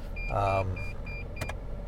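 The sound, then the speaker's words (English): A truck's parking sonar beeps in short, evenly spaced high-pitched tones as the truck pulls in, fairly quiet over the steady hum of the vehicle's cabin and a brief voice-like murmur. “So I'm actually pulling in, and so that beeping you're hearing is the, I turned it off, but it was the sonar on my truck.”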